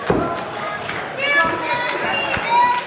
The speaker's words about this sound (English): Somebody in the crowd yelling, "You can't beat him." Actually, I know exactly who that is.